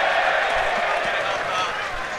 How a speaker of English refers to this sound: A huge cheer goes up here at Watman Way as the Stevenage player on the far side fails to keep that in.